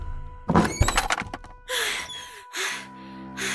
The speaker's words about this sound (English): Sorry, I'm late. Miss Caruso, please next time take it easy on my door.